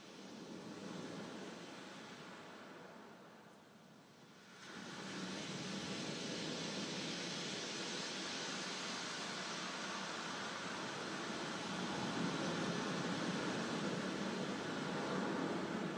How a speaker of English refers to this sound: So maybe you do white noise, pink noise, or some kind of color noise.